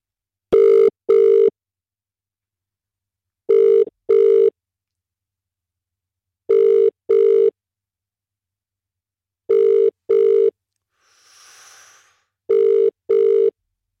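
A telephone rings out unanswered on a dialed call, five pairs of short double rings evenly spaced about three seconds apart, clear and steady with nobody speaking.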